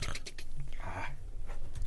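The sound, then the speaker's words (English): A person imitates the Predator's ticking, clicking sound with their mouth: quick rattling clicks, a brief throaty voiced rasp in the middle, then another burst of clicks at the end. “I always wanted to learn how to do the predator sound. I could never do it. It's like that ticking.”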